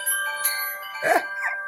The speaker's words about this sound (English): Let's not forget the wind chimes.